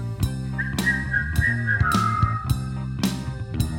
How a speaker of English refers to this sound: You know how to whistle, don't you? You just put your lips together and blow.